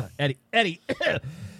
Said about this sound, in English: let me clear my throat.